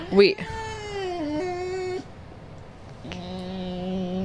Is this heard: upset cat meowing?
yes